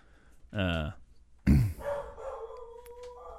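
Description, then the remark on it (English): A female dog gives two loud, sharp barks about a second apart, followed by a thinner, drawn-out whining tone that trails off. “Is that why she's barking?”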